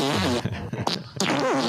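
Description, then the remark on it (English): A fart sound effect plays fairly loud, a buzzy, wobbling blast that breaks off briefly before a second drawn-out, pitch-bending toot. “In the chat, we had somebody demanding fart sound.”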